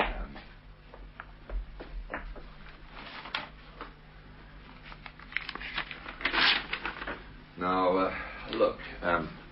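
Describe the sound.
A sheet of paper is torn from Mrs. Haskell's notepad, a short crackling rip among light rustling and handling sounds, followed by a man starting to speak.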